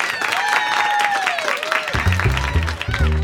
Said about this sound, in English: It's stand-up week, so put your hands together for today's comedian,